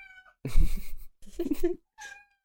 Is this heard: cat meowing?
yes